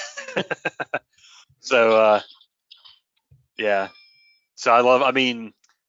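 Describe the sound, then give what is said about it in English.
A Noisy Cricket toy gun sound effect: a quick run of about six sharp clicks, then three loud, buzzy electronic zaps with a strong pitched tone, separated by short pauses. “Now, obviously I had to get the noisy cricket.”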